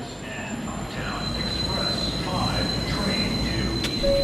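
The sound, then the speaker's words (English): A busy subway station at Fulton Center, a shopping mall and subway station in Manhattan, New York City, with a train rumbling through, wheels squealing and a steady high metallic tone above the low roar, with indistinct crowd chatter in the background. “Like Fulton Center, a shopping mall and subway station in Manhattan that hundreds of thousands of people pass through every day.”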